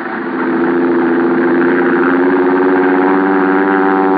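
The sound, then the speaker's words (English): A small plane's engine drones steadily and loudly as it flies off into the night. It is a rich buzzing hum with layered tones that swells briefly at the start and then holds even throughout, with no voices. “I watched Al's plane until it was swallowed by the darkness.”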